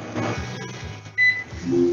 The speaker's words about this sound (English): I'll just push the button here. Reheat 1 cup of coffee. Microwaving 1 cup of coffee. The microwave automatically starts. We get a little verbal confirmation from the Echo.